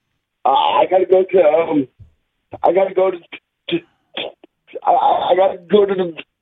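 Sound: faint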